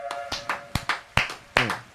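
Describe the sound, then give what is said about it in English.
A handful of sharp hand claps, roughly nine in two seconds, land in a loose, uneven rhythm. They are fairly loud, with a few noticeably harder smacks among them. “Can't even put my hands together.”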